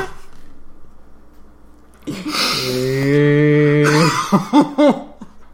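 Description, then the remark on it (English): A voice imitates a microwave with a loud, steady, droning hum held for about two seconds, then breaks into a few short, choppy laugh-like bursts. Quiet room noise comes before it. “Maybe sounds like a microwave. I thought it'd be funny.”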